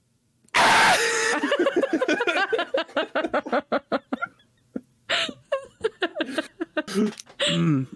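A sudden, loud, raw primal scream bursts out, then breaks into a rapid string of breathy, pulsing vocal yelps that sound close to laughter before trailing off in scattered outbursts.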